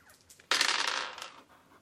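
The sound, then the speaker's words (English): Dice tumble and clatter across a hard tabletop in one sudden burst during a tabletop game, rattling for under a second before quickly settling. The sound is fairly loud, with no voices. “So I could roll it again, right?”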